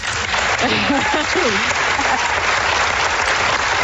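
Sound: studio audience applause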